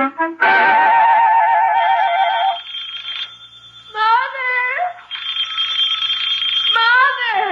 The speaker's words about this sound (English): Wake up, your phone's ringing. I know it.